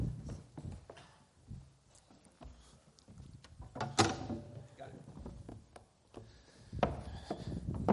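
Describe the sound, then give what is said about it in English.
Wooden chairs scrape and knock across a floor as they are shifted into place, a few irregular thumps and drags with faint murmuring voices behind. “And we should have some chairs somewhere. There they are.”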